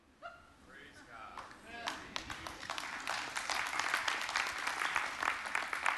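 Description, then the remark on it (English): An audience breaks into applause for God, a few scattered claps quickly swelling into loud, dense, sustained clapping from many hands, with some voices calling out at the start. “If you're going to give God a clap, why don't you make it a good one?”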